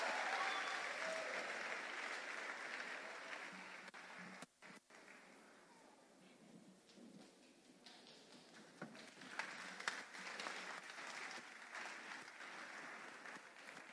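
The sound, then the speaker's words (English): An audience applauds the counselors for about fourteen seconds, a dense wash of many hands clapping that starts loud, dips briefly midway, then carries on at a steady, slightly softer level. “Once again, give them a big round of applause.”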